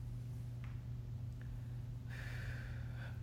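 A single airy deep breath in and out, taken during a guided breathing exercise, rises out of a steady low background hum, preceded by a couple of faint small clicks; no one speaks.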